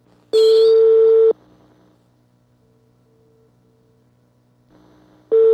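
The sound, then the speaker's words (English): Telephone line tones while dialing an overseas number directly from Canada, using 011, country code 39 and city code 6. A loud, steady, mid-pitched electronic beep lasts about a second, then a stretch of faint hum with a soft tone, then the same loud beep starts again at the end. “011 for overseas, 39 for the country, 6 for the city code, and then the number 4982.”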